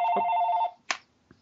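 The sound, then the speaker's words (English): A telephone rings once in a steady electronic trill lasting under a second, followed by a sharp click and a faint knock, with no voices. “Just let it ring for a minute.”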